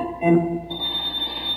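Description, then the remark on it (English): A short burst of a telephone ringing at Dippy Dwarf's hotel, the Dwarf Waldorf, in a radio animal show, a bright tonal ring that gives way to a thin, steady high-pitched tone, moderately loud, with no voices. “Hey, the phone's ringing.”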